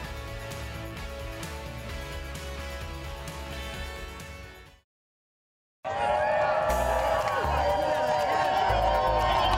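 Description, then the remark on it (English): A loud outdoor crowd at NBC's Today show cheers and whoops, many voices shouting over one another in a dense, continuous roar that follows a brief moment of silence. “We got a great crowd out here.”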